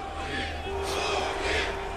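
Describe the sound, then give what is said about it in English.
A large crowd at Putin's staged victory rally in front of the Kremlin after his March 2012 presidential election roars continuously, a dense wash of voices that swells twice into louder bursts of cheering and shouting, with a faint sustained tone running underneath. “He celebrated with an elaborately staged victory rally in front of the Kremlin.”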